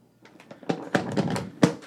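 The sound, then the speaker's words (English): A voice imitates a paper pop with a quick run of crackly, snapping bursts, three sharper pops standing out, fairly loud with no talking. “I don't quite do the paper pop justice here, but it's time for that listener feedback.”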